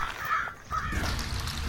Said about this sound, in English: do you know a group of crows is called a murder? Well, I'm not surprised if they go around pooing on people.